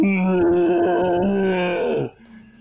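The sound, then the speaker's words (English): A human voice imitates a collapsing creature's whale-like dying wail, one loud, sustained moaning cry lasting about two seconds that sags in pitch before cutting off, followed by near quiet. “The other leaper starts to run, like flee as fast as it can, as she collapses, gives out this whale like.”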